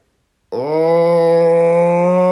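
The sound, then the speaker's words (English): A person imitates the low yowl of cats fighting in the dead of night: after a brief silence, one loud, sustained, moaning vocal tone holds at a steady low pitch until the end. “A proper cat fight. What they do? Tell me. So, usually happens in the dead of night.”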